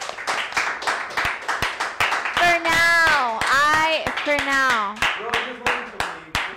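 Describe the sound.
A small group claps in quick, steady bursts close to the microphone, while a voice lets out long, sliding cheers partway through.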